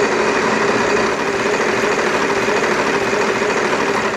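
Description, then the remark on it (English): The Wheel of Topics prize wheel, recently sprayed with WD-40, spins, giving off a steady, rapid mechanical whirring and clatter that stays loud and even for the whole few seconds, with no voices over it. “let's give that wheel another spin, please.”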